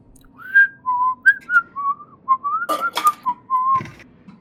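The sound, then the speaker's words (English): Someone whistles a lilting elvish tune, a string of clear sustained notes gliding up and down, fairly steady, over a low background rumble with a couple of brief scuffing noises. “You hear like somebody in there kind of whistling an elvish tune.”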